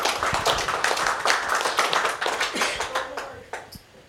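A church audience claps together for a preacher coming forward to bring the word of God, a dense, steady burst of applause that stays loud for several seconds before thinning out and fading toward the end.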